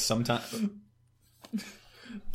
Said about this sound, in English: I mean, clearly with that last slap, you really got my jaw pretty good. Yeah. I think a tooth popped out.